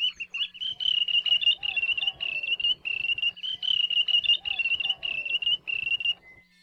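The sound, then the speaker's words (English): Wandering tattler (ulili) alarm calls: a rapid run of high, piercing whistled notes on one pitch, repeating almost without pause. Fainter, lower swooping calls sound in the background. “Their English name, wandering tattler, refers to their alarm calls to warn other birds when hunters or predators are nearby.”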